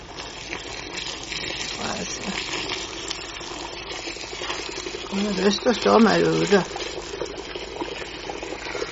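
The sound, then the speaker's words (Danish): Steady rushing splash of 20 litres of steaming boiling water being poured over in a continuous stream, fairly loud, with a voice speaking briefly over it partway through. “Nå slår vi det kokende vannet over her.”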